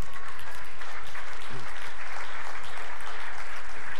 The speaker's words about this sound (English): That's what my notes said. It said, say how long you've preached, and then people can clap that it's your last, right? So 20 years, okay? And I appreciate the applause for that.